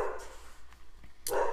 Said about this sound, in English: Dogs are going crazy. You like dogs? Quiet dogs.